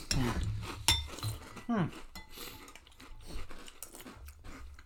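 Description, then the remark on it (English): Crackly crunching of someone chewing crunchy cereal, a dense run of sharp bites and grinding, with a few brief vocal sounds and clinks mixed in. “It's the most crunchy. It might be a little too crunchy.”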